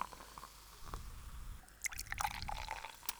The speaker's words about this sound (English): All right. I will pour these. There's only one glass on your can, so you gotta spread it nicely.